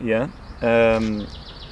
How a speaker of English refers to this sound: Yeah. Cuckoo. I think I've just heard cuckoo.